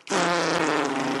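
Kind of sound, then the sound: human body sound, fart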